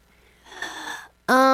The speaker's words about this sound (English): Is that your last breath? I don't know this answer. Like a dying gasp.